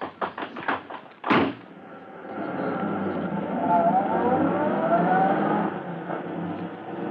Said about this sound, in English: as Polecat and Scrubby in their fast car escape from the scene